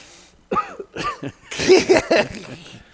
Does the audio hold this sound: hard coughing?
yes